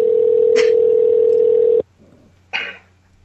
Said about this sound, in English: It's like two rings. That means he, like, hit the button to deny the call, right?